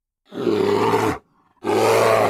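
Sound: grizzly bear roaring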